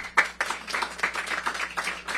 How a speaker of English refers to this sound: Let's give a big round of applause for all of you who showed up.